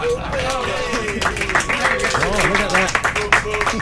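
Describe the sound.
Audience applause, a steady wash of many hands clapping that runs throughout, with voices talking and laughing over it.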